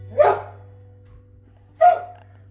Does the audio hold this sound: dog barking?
yes